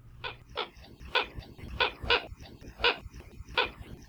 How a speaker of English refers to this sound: Alae Keokeo, or Hawaiian coots, are water birds that are found on all the main Hawaiian islands except Kaho'olawe, and are endemic to Hawaii, meaning that they're found nowhere else in the world.